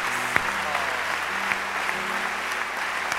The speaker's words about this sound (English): Oh, you know, let me just be selfish. Help me to clap for God for the help he has given my life.